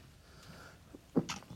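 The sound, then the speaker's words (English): A single short sneeze bursts out near the end, a sharp explosive release with a hissy tail, against a quiet background. “God bless you.”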